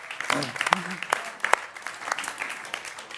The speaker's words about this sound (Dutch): Laat hem een warm applaus geven. Give him a hand.